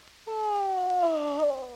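A loud, drawn-out human yawn, voiced and sliding slowly downward in pitch for about a second and a half, heard on its own with no other sounds.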